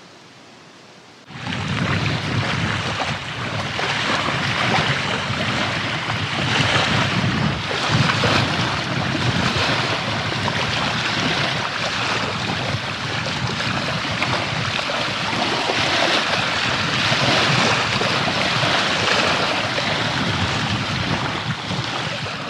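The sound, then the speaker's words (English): Wind-driven waves of the Salish Sea wash steadily onto a shore, a dense, continuous roar with gusty wind buffeting. It begins abruptly after a brief moment of quiet, and no one speaks. “And one of those beings is the Salish Sea, and we got to stand in front of the Salish Sea with the wind blowing the waves into the shore.”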